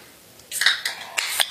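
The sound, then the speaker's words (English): A one-pint can of beer being cracked open: a run of sharp, bright metallic clicks and snaps with a brief fizzy edge, four quick bursts over about a second, with no talking. “Let's crack this open.”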